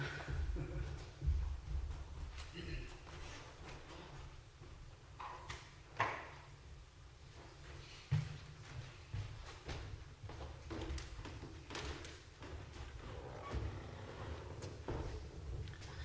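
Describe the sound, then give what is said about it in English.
A door is closed with a few dull thuds and knocks amid room noise and soft shuffling, and a low hum runs underneath. “So I'm going to close this door before the youth line here.”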